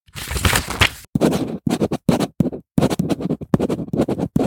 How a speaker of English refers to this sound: He pulled out a stack of sticky notes. He grabbed a pencil from his desk and scribbled quickly on his sticky note.